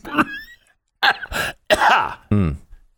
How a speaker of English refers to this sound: It was a long cough. That could be a whole new new variant.